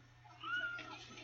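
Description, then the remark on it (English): A single short meow from a female kitten named Tiger, clear, rising then falling in pitch, with a steady low hum underneath. “what's the cat's name”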